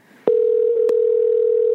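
A phone line tone on an outgoing call to the caller's father: after a sharp click, a steady, loud, low-pitched electronic hum holds unbroken to the end, with one faint click partway through. No one speaks.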